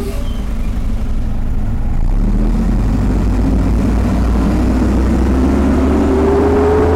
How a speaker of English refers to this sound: Kind of wait for the noise to pass real quick. I'm sorry, man. Doing this out on the street is actually really difficult because you don't get very good sound quality. Yeah. Let this dump truck pass, and then I'll give you one more question.